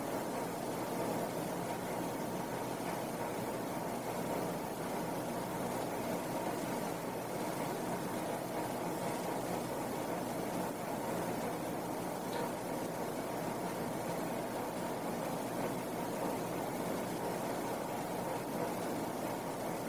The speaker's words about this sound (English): And of course, if I quit speaking for a few moments, you become aware of a lot of other sounds, some traffic noise from outside, little sounds in the room.